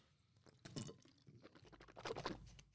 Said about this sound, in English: Need some electrolytes. Am I dehydrated? I'm a little bit dehydrated. Hold on, let me take a sip of my water. Water!